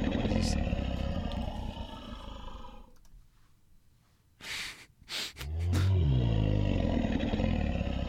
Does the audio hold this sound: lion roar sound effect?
yes